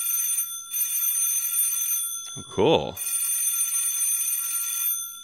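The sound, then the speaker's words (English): A battery-powered electric bell from a small electric bell set, connected to two D batteries, rings continuously with a steady, high-pitched metallic trill, briefly pausing once, while a voice says a single short word partway through. “So I had a little electric bell set.”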